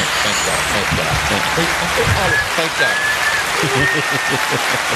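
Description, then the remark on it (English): An audience claps steadily throughout, a dense, even wash of applause that holds its loudness for the whole stretch, with a few voices calling out beneath it. “Give them a loud round of applause.”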